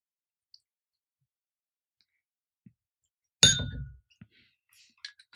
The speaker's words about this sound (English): We were all very interested in watching Lyndon pour that whiskey.